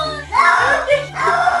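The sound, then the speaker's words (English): A cat yowls in two loud, drawn-out wails with bending, rising-and-falling pitch, sounding almost like a word "no," over a low steady hum. “He's screaming the word no because he doesn't want to take a bath.”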